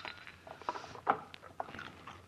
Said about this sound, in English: How can you chew those things like that? Wash it down with something.